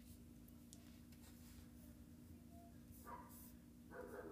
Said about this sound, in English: Oh, dog barking in the background. Sorry about that.